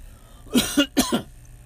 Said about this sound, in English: Excuse my coughing. I am still getting over my COVID crap. But I'm feeling much better. Almost back to normal. Just got this lingering cough that doesn't want to go away.